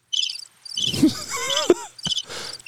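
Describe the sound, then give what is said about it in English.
A crickets sound effect: steady, high-pitched pulsing trills, with a few brief low bumps and faint tonal swoops layered underneath partway through. “She either gets crickets or a trombone.”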